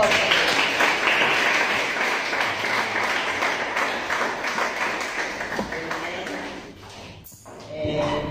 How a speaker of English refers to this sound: Hallelujah. Let's give God a clap.